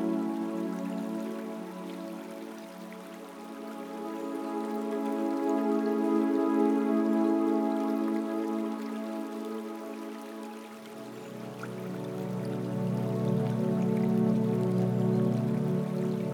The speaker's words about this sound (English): Grateful for the raindrops on the water.